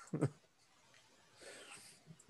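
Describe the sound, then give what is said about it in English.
A dog snorts once, then lets out a breathy, raspy wheeze a moment later. The sounds are quiet and there is no talking. “He's got a lot to say right now. Welcome to our third host, a dog.”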